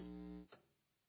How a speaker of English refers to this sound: That's the now. Loudest it's ever been. I hear it. Listen to that. The hum is back with reinforcements. The hum is back.